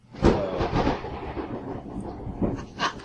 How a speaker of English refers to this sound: I hope you all can hear that if you're listening on the podcast. It's an awesome thunder.